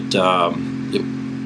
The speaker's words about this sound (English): Might just hear a pump just go off there. Hopefully you're not picking that up on the microphone.